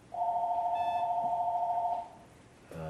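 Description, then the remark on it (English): A telephone rings with one steady, sustained electronic tone lasting about two seconds, fairly loud, then cuts off into quiet before a brief new sound begins at the end. “Forgive my ringing telephone.”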